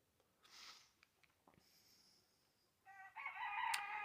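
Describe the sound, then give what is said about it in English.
Roosters crow, first a thin call, then a louder, strained cock-a-doodle-doo that runs to the end. Faint scuffling sounds come before the crowing, and no one speaks. “The roosters are agreeing with me, I believe.”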